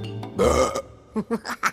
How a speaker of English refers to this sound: Burping. What is it and how does it work? Well, burping hinges on our mechanical makeup and the way we ingest our food.